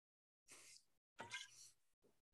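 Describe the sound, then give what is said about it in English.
Someone takes a quiet sip of Basil Hayden bourbon, with a soft slurp and a breathy exhale, followed by a single sharp click like a glass being set down. No talking. “Yeah, what other podcasts are you going to get where there is a rogue host drinking on the air?”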